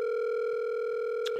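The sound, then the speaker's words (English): A steady, unbroken telephone ringback tone hums on one pitch for the whole moment, bright, buzzy and very loud, with a faint click near the end and no one speaking, while calling a master mechanic in Webster and Dudley, Massachusetts. “It was terrifying how loud that was.”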